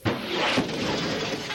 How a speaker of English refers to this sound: The enemy has brought artillery to shell the town, just as Higginson suspected they would. The two Union gunboats on hand swing into action, firing towards the west. The rebels lob a few more shells in the direction of the town, then cease fire.